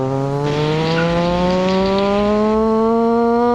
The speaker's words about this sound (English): You hear this revving, like,